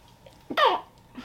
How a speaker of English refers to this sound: And then I'm gonna sneeze, hold on.